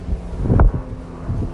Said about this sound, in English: Look, as I'm talking about this, the more passionate I am, the more windy it's getting.